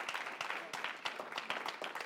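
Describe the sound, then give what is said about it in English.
An audience claps for their pastor, a dense, steady patter of many hands with sharp irregular slaps, sustained at an even moderate loudness for the full couple of seconds. “He prefers, clap it up for him.”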